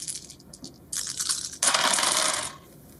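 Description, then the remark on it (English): A dropped die clatters across a hard tabletop, starting with a few light taps, then a louder, sustained rattling roll before it settles, with no talking. “I dropped one.”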